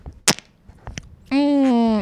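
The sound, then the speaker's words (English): A sharp pop and a couple of fainter clicks, followed by a loud, sustained buzzy fart lasting under a second, holding a steady low pitch before sagging slightly at the end. “That was a fart. That last one.”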